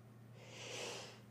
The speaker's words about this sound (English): I apologize. I was holding that sneeze in.